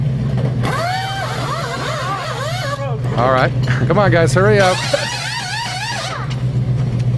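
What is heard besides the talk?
race car engine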